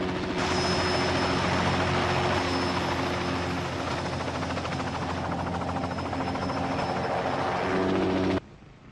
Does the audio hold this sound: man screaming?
no